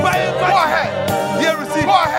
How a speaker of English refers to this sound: Heaven is rejoicing. Because of these ones. Go ahead. Keep on clapping. Rejoice. With the salvation of this one.